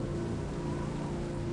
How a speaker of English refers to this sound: And it starts raining.